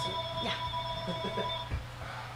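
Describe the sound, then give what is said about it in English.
A telephone rings with a steady, high electronic tone that holds for about a second and a half and then cuts off, while voices murmur softly underneath. “I'm going to throw that phone. I don't know. I didn't see answer it. Let me answer it.”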